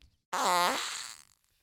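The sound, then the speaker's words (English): A single gentle fart sounds out, a buzzy, drawn-out toot lasting about a second that starts abruptly and fades away softly at the end, heard alone with no talking. “just like a gentle little fart.”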